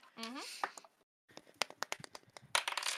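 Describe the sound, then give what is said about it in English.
A brief voice at the start, a short pause, then a d20 rolled for an insight check clatters across a table in a quick, irregular string of sharp clicks and taps, ending in a busier burst as it knocks other dice. “That hit my other dice.”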